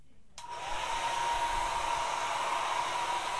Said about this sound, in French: On va poursuivre, cette fois-ci on va continuer avec un sèche-cheveux. On va faire passer le sèche-cheveux devant, derrière, la tête.